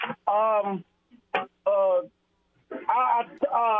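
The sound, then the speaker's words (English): A telephone rings with a series of short, tonal, buzzy bursts in a repeating pattern, sounding thin and band-limited as if heard over a phone line, with brief pauses between rings, before the call is answered. “I thought it took a long time for Vital to answer the phone.”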